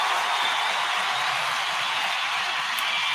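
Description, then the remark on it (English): An audience breaks into a round of applause for the guests who showed up, a dense, steady wash of many hands clapping at once, fairly loud and even throughout with no voices standing out. “So let me get a round of applause for all of y'all pulling up.”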